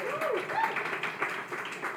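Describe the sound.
An audience at a recorded evening show with bar service applauds the evening's server for about two seconds, with dense clapping at a fairly even level and scattered voices and brief whoops rising through it.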